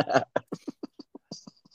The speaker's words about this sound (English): You had a bit of a coughing fit then.